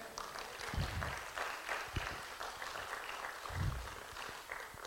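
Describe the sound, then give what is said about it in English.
An audience claps together in a church, a dense, steady patter of many hands lasting several seconds, with a few low thumps and a faint murmur of voices underneath. “Can I just ask you, you think the devil's going to be afraid of that clap that you just gave right now?”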